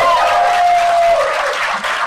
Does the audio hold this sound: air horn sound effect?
no